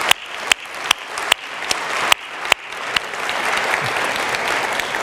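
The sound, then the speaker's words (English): Audience applause at the Lexington campus after the announcement of its new campus pastor, starting with a few sharp, separate claps, then swelling into steady, dense clapping from many hands, with no talking over it. “That was my second applause line.”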